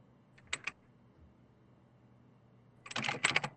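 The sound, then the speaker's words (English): A few isolated keystrokes on a computer keyboard, then a quick burst of rapid clicky typing near the end, fairly quiet with no voices. “Oh, I love that keyboard, the little, action you got going on there.”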